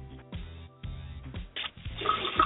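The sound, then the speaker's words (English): Water runs and splashes over a narrow, muffled telephone line, growing into a steady rushing hiss toward the end, with no one speaking. “Somebody's got the water running.”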